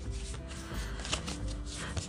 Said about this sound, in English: Oh, I didn't get to finish shuffling.